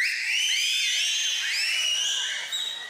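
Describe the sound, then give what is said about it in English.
Many shrill, piercing finger whistles overlap at once from an audience, forming a loud, sustained wall of high-pitched tones with sliding pitches throughout. “All right, everybody can whistle with their fingers. Go ahead, whistle.”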